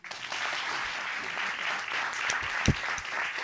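Light, polite golf-clap applause from a small group, a soft steady patter of many hands with no voices, holding at an even, subdued level throughout.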